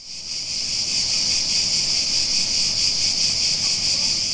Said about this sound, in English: If you ask me, I think cicadas are the signature sound of summer. In the late spring or early summer, they emerge from the ground, shed their exoskeleton, and then buzz and rattle as loudly as possible to try and attract a mate.